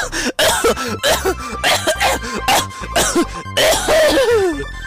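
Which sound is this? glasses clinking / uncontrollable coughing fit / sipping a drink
uncontrollable coughing fit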